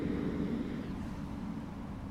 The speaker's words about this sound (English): Oh, I think the school bus is passing. Let's see.